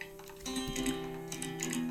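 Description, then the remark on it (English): A steady, crisp ticking repeats at an even pace over sustained, droning musical tones at the start of a Christmas song, like a clock keeping time. No voices are heard. “Yeah, that weird, like, ticking?”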